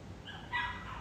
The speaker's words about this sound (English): Oh, he's howling. He's, can y'all hear River?